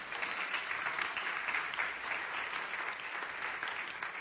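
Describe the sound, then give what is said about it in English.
An audience claps together for God during a morning church sermon in steady, sustained applause, a dense wash of many hands with no single beats standing out, holding an even loudness throughout and no voices rising above it. “Come on, give God a hand clap this morning.”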